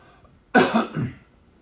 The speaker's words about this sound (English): Quick cough.